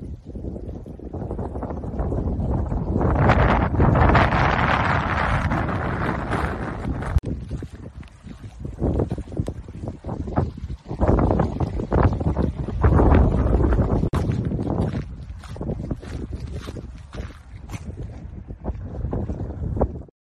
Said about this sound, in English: The snow was melting. But this is what it looks like as it's melting. This is one reason why I hate spring. There's so much melting snow. pretty much a river.